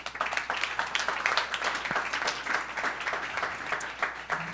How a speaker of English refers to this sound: So a big round of applause, please, for Barats.